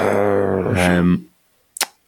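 A sustained, buzzy tonal whine cuts off, and after a short pause a single sharp, crackling pop bursts out, like a firework going off right outside a window.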